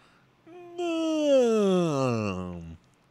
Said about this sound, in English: Sorry, just letting out a big yawn.